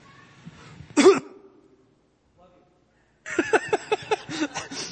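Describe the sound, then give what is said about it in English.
A single loud cough bursts into a microphone during a live stream, followed by a moment of near silence before someone starts talking. “So if you're on live stream, you just got a loud dose of a cough.”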